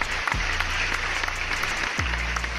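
A canned applause track: dense, steady clapping of a crowd, evenly loud throughout, with a low hum that dips and restarts twice in the background.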